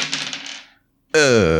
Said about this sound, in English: Give me a roll to kick some ass as you wade through this crowd of Vol's believers. Yeah. Do that again, Dice.